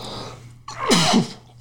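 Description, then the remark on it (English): A single sneeze: a brief sharp intake followed by a loud, breathy burst with a voiced edge, trailing off quickly over a faint steady background hum. “I'm going to sneeze. Hold on.”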